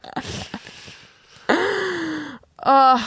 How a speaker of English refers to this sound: Sometimes I'm just so sleepy. You with your fucking yawns.